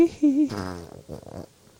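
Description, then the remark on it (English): A person blows a wet, buzzing raspberry with their mouth, a loud sputtering fart imitation lasting about a second, followed by a softer fluttering tail. “Was that an armpit fart? Or no, that was just a mouth fart.”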